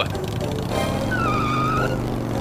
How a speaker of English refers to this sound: In a puff of smoke and the squealing of tires, the motorcycle rocketed down the roadway to the long-abandoned, but not entirely empty, halls of the once immaculate White Spring Resort.